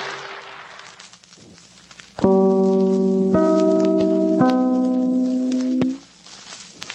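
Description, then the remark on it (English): NBC broadcast network chimes closing a radio program: three clear, bell-like notes struck in slow succession, each ringing on and overlapping the last before all fade together, with faint hiss before and after. “Had to wait for those chimes.”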